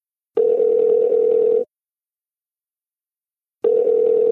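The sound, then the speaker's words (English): A telephone dial tone hums steadily at a low pitch, sounding in two separate bursts with a long silent gap between them; no voices are heard. “We took another step in our friendship and did something which I don't do with many friends now, which is like open up the phone line.”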